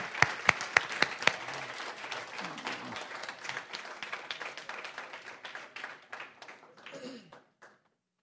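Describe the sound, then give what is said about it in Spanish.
A church audience breaks into applause for the Lord, opening with a few sharp, loud claps before settling into dense, steady clapping from many hands that thins and fades out after about seven seconds. “Give a big hand to the Lord.”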